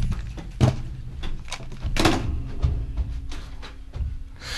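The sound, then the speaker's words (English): A door shuts with a few muffled thumps and rattles, followed by a brief louder knock and some shuffling handling noise. “Yeah, I closed the door on her.”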